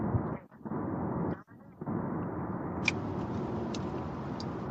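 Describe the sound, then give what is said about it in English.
Steady, broad rumble of a car on the road, loud, with two brief drop-outs and a few faint high clicks near the end. “I'm gonna get that car's license.”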